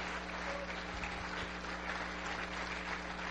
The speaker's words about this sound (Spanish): Aplauda más fuerte.